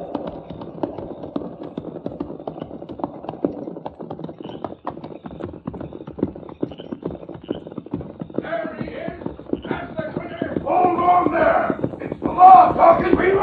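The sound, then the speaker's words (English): Rapid, steady hoofbeats clatter as horses approach at a brisk pace, fairly loud; partway through, a jumble of voices and crowd noise rises over the continuing hooves. “I know that horse anywhere.”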